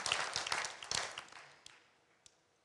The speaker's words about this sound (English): You can clap. Go ahead and clap. Go ahead and clap.